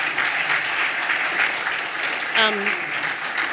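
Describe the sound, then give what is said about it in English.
A crowd applauds steadily throughout for a panel's panellists, a dense, even patter of many hands clapping, with a short voice briefly cutting through the applause near the end. “Ladies and gentlemen, a massive round of applause for our panellists.”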